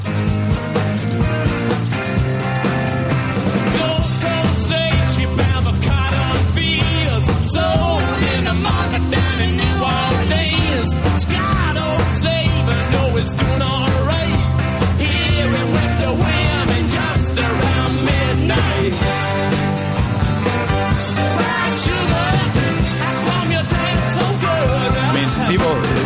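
sound effect, rock song playing

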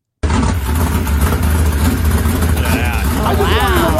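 vehicle, high-horsepower car engine revving

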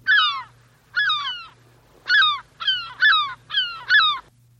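bird, seagull calls

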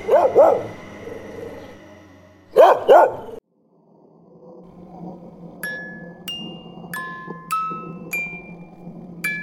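animal, dog barking

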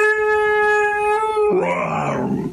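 animal, dog vocalizing

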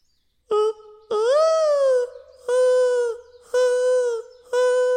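bird, dove mating call

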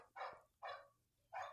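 animal, neighbor's dog barking

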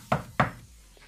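household object, closet door opening

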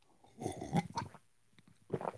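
food or drink, sipping hot coffee

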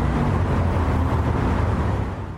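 vehicle, bus driving in traffic

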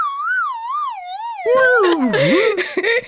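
sound effect, slide whistle sound effect

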